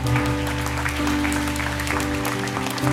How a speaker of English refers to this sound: It's all right to clap.